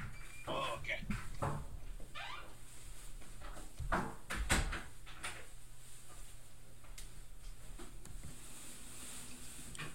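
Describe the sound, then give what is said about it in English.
Someone comes through a door: a few quick clunks and rattles early on, then a louder cluster of thumps and knocks midway, over a steady low hum. “Wait, someone's coming at the door.”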